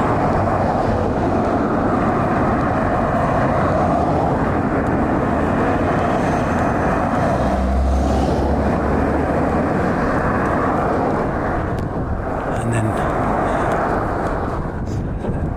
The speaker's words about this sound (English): So it's a little bit noisy here, isn't it, with the main road, the high street, as we call it.